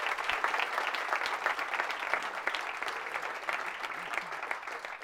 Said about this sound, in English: Please give another round of applause for all of our Agape Latteers and right over there for making this a huge success.